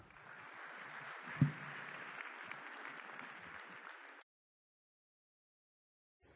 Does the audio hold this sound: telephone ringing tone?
no